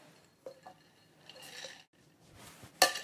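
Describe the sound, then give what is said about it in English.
Glasses clinking together in a toast, with a couple of light taps and some faint ringing before one sharp, bright clink near the end, with no voices. “All right, come here. Cheers.”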